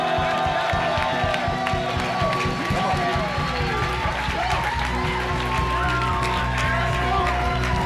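An audience applauds and cheers steadily for several seconds for a group of honoured people as a speaker comes up, a dense, loud wash of clapping with occasional whoops, while tonal music plays underneath.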